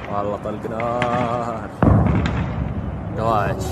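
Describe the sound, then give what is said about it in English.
A sudden loud boom from explosions at refinery facilities in Saudi Arabia, at about 3:30 on a Saturday morning, cuts in partway through, followed by a low rumbling roar that lingers, while a person keeps talking over it. “But what we do know is that at about 3:30 in the morning on Saturday morning in Saudi Arabia, there were a series of explosions at a number of refinery facilities.”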